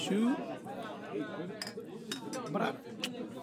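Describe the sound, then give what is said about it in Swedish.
Glasses clink together several times in a toast, bright, with a few separate chimes spread over a couple of seconds while voices murmur underneath. “Skål, skål. Skål, fellas.”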